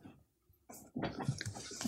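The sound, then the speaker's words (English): A puppy named Custard chewing on a sofa: a quiet start, then a brief gnaw followed by a second of dense, crackly tearing and munching sounds with no talking. “She's eating the sofa.”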